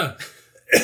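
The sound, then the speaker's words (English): A short, odd-sounding cough, with a quick rough burst at the start and a sharper, louder one right at the end. “Weird cough there.”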